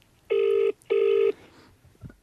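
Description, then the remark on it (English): Two steady electronic ringback tones from an outgoing phone call, each about half a second long with a short pause between, clear, followed by quiet. “I just rang you there to ask you a question about crows, just on the podcast too.”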